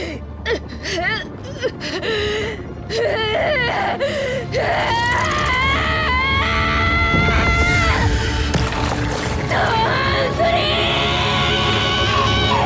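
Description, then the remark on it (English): A voice actress in a video game screams as the character Jolene, gasping and wailing in loud, drawn-out, intense bursts, her cries rising and falling in pitch over a steady background of ambient sound. “I think Jolene's screaming is very effective. The voice actress really goes for it.”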